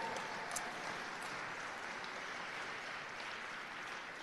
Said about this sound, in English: So you can clap for that, sure.